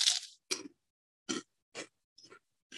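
crunching on pork rinds

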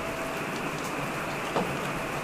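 rain falling

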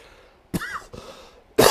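cough

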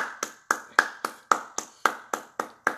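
hands clapping

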